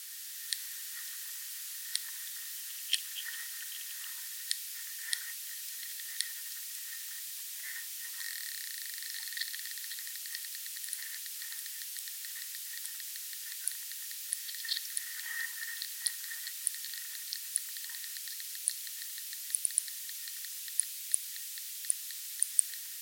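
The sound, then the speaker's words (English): Underwater sounds of a lesser diving beetle, Acillus sulcatus, isolated in a special field tank: scattered sharp ticks and clicks over a steady, thin high-pitched buzzing hiss, fairly quiet and continuous, with no voices. “This one is of the lesser diving beetle, Acillus sulcatus.”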